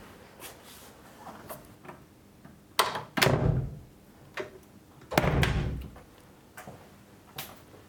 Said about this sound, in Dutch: Maar ik ga eruit. En de deur gaat open. Dat is heel fijn.